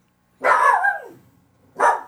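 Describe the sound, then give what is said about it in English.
A dog named Bug barks twice: a long, drawn-out bark that trails off, then a shorter second bark a moment later, fairly loud with no talking. “In the background, my dog is barking.”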